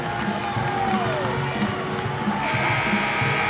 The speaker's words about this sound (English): Finally, the buzzer sounds so we can play basketball again.